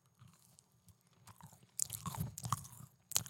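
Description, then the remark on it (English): Squelchy chewing of a soft homemade chocolate chip cookie loaded with marshmallows: quiet at first, then a run of wet, sticky bites and mouth noises growing louder over a few seconds, with no talking. “No, it doesn't crunch, awful. But it is a good squelch.”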